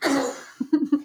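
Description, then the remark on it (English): A single sneeze bursts out as a loud, breathy rush of noise, followed by three or four short, low voiced huffs trailing after it. “God bless your background sneeze.”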